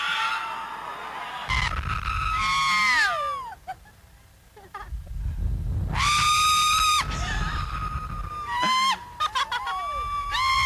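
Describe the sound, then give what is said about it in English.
A crowd screaming on a fair ride that swings in circles: shrill, wailing voices rise and fall in loud, overlapping bursts, dropping briefly into a lull before surging again over a low rumbling background. “Just literal, just screams.”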